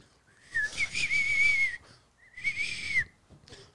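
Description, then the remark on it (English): Someone whistles a clear, high tune in two melodic phrases, a longer one followed by a shorter one after a brief pause, prominent with some hiss behind it. “I wish I could whistle that perfectly.”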